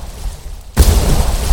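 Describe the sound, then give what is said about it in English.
Three explosions in rapid succession at night: a sudden, loud explosion bursts in after a quiet, low rumble and is followed by sustained booming, roaring noise that stays heavy through the end, with no voices. “Then, in rapid succession, heard 3 explosions.”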